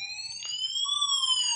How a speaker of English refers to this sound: What is that? The sweet sound of sirens. Oh my god. That sounds great,